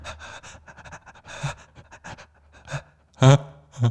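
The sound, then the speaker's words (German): A person imitates a panting dog with quick, rhythmic breathy huffs, ending in a couple of louder voiced gasps with a whiny, strained edge. “Oder ein Hund, der so ein bisschen außer Atem ist. Und ein bisschen Angst hat.”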